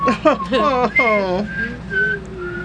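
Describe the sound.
Someone whistles the first seven notes of a tune, a short melodic phrase of several distinct notes, opening with a few quick, voiced-sounding notes before settling into thinner, sustained whistled tones.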